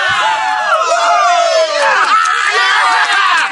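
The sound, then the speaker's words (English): A crowd cheers and whoops loudly and continuously, many overlapping voices rising and falling in excited shouts with high-pitched yells throughout, celebrating the 50th anniversary of Mr. Remodeler on the show Senior Care Live. “man, you got a lot of rowdies out there cheering.”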